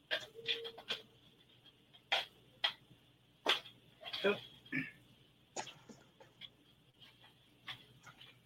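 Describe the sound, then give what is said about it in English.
Oracle cards being shuffled, a run of quick papery riffles and soft taps coming in irregular bursts, fairly quiet, with a faint steady hum underneath. “I'm shuffling.”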